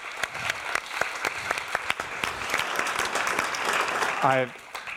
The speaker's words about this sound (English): deserves another round of applause for that.